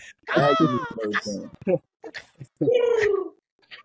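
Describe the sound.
A person imitates a bird call with their voice: two loud, warbling, high-pitched cries with wavering pitch, separated by short clicking and chirping noises, with no other talking.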